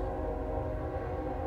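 A train rumbles steadily past with a deep low-end roar while its horn sounds a sustained, loud chord over the top for the whole short stretch, with no voices.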